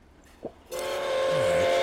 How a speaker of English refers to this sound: Right. Oh, not you. You aren't the right train.